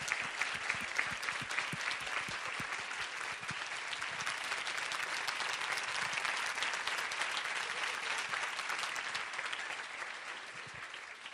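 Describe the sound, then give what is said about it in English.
Sustained applause from a large audience of students and others in a room, honouring Jackie and Mike Bezos: a dense steady roar of many hands clapping that holds at an even, loud level for over ten seconds without anyone speaking. “And I hope that everyone will join me in a huge round of applause.”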